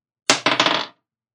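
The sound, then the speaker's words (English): Dice rolled for an insight check in a tabletop game clatter across a hard tabletop, coming up 10: a sharp first impact, two more distinct knocks, then a quick run of small rattling bounces that settle within about half a second, fairly loud. “Oh my gosh, this dice is not doing me any favors. 10.”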